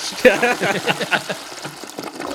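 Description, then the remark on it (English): A person makes a vocal imitation of a toilet flushing, a gurgling, whooshing noise with throaty rasps lasting a couple of seconds, moderately loud. “That's a flushing, doing that is a flushing sound, yeah.”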